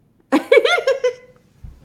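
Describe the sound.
A person voices a single drawn-out cat meow as a running joke, a wavering, nasal mew that lasts about a second at moderate loudness before trailing off, followed by a faint low thump.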